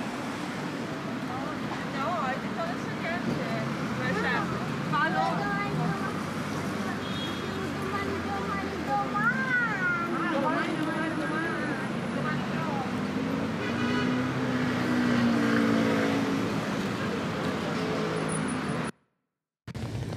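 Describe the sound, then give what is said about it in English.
Steady, heavy rain hisses continuously alongside gusty wind rumble outdoors at a market in the middle of the day, loud and unbroken for most of the stretch, with voices talking underneath before it cuts out abruptly near the end. “now with the rain and the wind becoming one of those dark and stormy night scenarios, except that it's the middle of the day and not dark”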